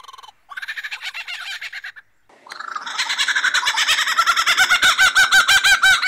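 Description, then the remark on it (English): A lyrebird imitating a kookaburra's call: a short burst of rapid cackling notes, a brief pause, then a louder, steadily building run of rhythmic laughing hoots, clear with no talking. “So they're known to like mimic, obviously, other birds. Such as the kookaburra.”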